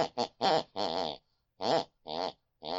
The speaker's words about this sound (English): the sound of my elderly mother snoring distantly from the room next door